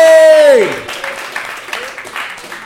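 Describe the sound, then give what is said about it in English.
A short sliding tone drops in pitch, then an audience breaks into scattered, moderately loud applause for a tamale seller that patters on steadily without cheering. “Why aren't you clapping for him?”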